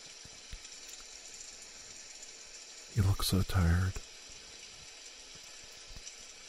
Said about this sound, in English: The rain actually picked up. It's even stronger now.